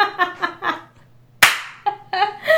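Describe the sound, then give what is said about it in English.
A single sharp hand clap by one person after a countdown rings out loud and crisp, decaying quickly, with brief voiced sounds before and after it. “Two, only me clapping.”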